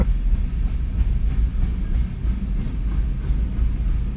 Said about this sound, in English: All right, well, this is a big train. I'm not going to let it bother me.